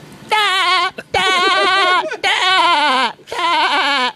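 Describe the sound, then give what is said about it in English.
A voice imitates SpongeBob's laugh, which comes out as a wavering, sheep-like bleat, four loud bursts separated by brief gasps for breath. “So if I do a SpongeBob laugh, are you a pretty good?”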